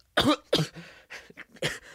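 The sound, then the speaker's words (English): A woman coughs in a rapid fit of about six harsh, raspy bursts, the first two loudest and the rest trailing off weaker, with no talking, set off by the stench of fire, blood and char from an opened basement door. “She opened the basement door, and the stench of fire and blood and char sent her coughing.”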